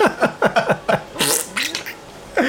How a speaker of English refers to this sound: Ice machine, shush. You can't talk to it, can you? It's got no water in there. Is it not? No, it's trying to suck. Oh, can you hear it? It sounds like me on the toilet the other day in the petrol station.